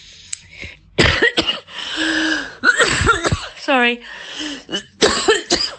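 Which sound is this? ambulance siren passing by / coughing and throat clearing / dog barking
coughing and throat clearing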